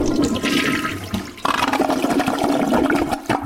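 A toilet flushes loudly, a rushing gush of water that surges again midway and keeps swirling and draining steadily to the end, with no voices.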